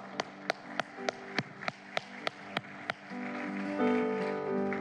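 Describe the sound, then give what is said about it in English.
A church group claps in steady unison for those who raised their hands, about ten sharp, evenly spaced beats over three seconds, then the clapping gives way to a swelling, sustained musical chord. “For those that raised your hand, we'd just like to give you a big clap.”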